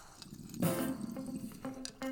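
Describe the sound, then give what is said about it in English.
A loud burst of water bubbling through a bong during a bong hit, followed by softer intermittent gurgles and a couple of short gulping swallows of coffee, with no voices. “I figured I would do a classic joint hit, bong hit, and then a gulp of coffee for y'all.”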